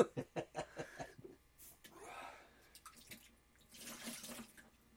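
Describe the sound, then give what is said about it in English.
A quick series of drips or splashes gives way to two bursts of water gushing from a tap, moderately loud, with short quiet gaps between. “You have to waste good water on that.”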